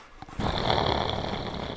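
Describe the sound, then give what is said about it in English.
A person imitates a dog's growl with the throat: a sustained, rough rumbling that starts after a brief pause and continues steadily, fairly loud, with no words spoken. “No, it's like you got to growl, like, with your throat.”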